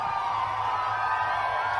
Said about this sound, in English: Here's Trump showing up in Reading, Pennsylvania today. Play it for me. Notice the difference now. Look at this crowd here, folks.